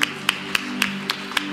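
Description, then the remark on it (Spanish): An audience at a church service claps in unison as applause for the Lord, six sharp claps at a steady, quick beat over a low, constant hum. No voices are heard. “Dar un aplauso al Señor, hermanos.”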